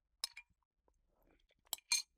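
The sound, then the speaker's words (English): A spoon clinks against a cereal bowl at home in a few sharp, bright taps, two pairs of ringing clicks with quiet, soft rustling of eating in between, no talking. “Gonna have a little bit of cereal.”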